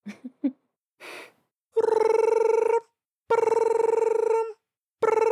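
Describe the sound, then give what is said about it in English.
A few short blips and a brief hiss give way to a phone ringing on an early-morning call to a sister: loud, steady-pitched buzzing rings about a second long, separated by pauses, the third cut off at the end. “So if you want to make an early morning phone call to your sister, you can sure try that.”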